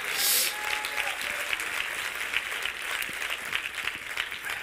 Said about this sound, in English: Oh, clap your hands if you love God tonight.